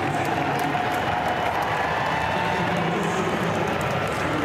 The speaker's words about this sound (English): There was almost no one there. There was a very, very low attendance for this game. And even the cheering for Pelosi as she walked up to throw the pitch was pretty funny.